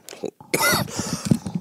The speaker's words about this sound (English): You'll edit all the coughs and stuff out, right? Yeah, sure.